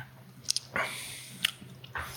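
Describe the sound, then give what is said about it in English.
Wet chewing of a sour candy with sticky squishes and a few sharp clicks, irregular bites spread over a couple of seconds against a faint steady hum, no talking. “So I gotta see if the sour went away. Just one more little half.”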